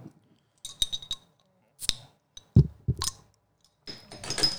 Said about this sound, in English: Let's open this bottle of Pliny.